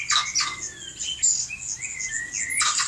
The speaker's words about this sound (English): I actually have a sound that I put together for you. It's a sound clip of several different hyrax making several different sounds.